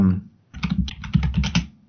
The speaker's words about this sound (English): Yay, dead air while you're typing.